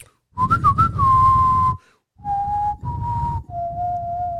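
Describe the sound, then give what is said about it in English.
A person whistles a slow, drawn-out Western-style tune, a few long sustained notes with a wavering start and brief pauses between phrases, over some breathy background noise. “That's a Nollywood whistle now. No, it's the Western.”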